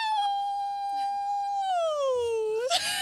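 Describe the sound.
A person lets out one long, loud werewolf-style howl, holding a steady wavering pitch before dipping lower and breaking upward at the end. No other talking is heard.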